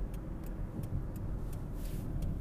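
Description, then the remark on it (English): A loud car rumbles, its deep engine noise steady throughout, with a faint regular ticking above it and no voices. “This car is being quite rude.”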